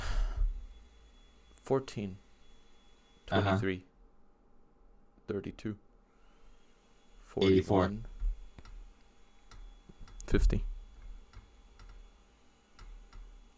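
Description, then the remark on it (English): Soft, irregular clicks of typing on a computer keyboard run through the background, broken up by a few short bursts of muffled voices. “You sure you're not typing it down to look for”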